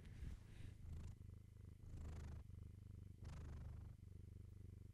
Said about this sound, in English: She does that too. Lots of purring.